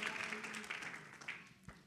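A seated church audience claps their hands together in praise to the Lord, a dense, steady, soft patter of applause with a faint sustained tone humming underneath.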